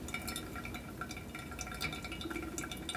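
Steady liquid trickling and dripping, a continuous wet patter with scattered brighter drops, as pour-over coffee drains through the filter after the final pour, with no voices.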